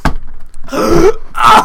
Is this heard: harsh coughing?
yes